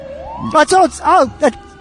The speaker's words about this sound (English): That's nice. That Andy Kindler's on that ambulance.